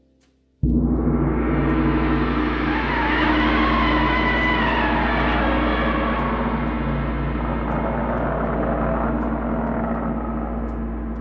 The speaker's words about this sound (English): you're going to swing a mallet that I've given you. Right. And you're going to hit the gong. So go ahead and wind her up and hit the old Gamera Gong.